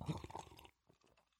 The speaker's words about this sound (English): as he sipped his homemade iced Americano in his New Jersey cup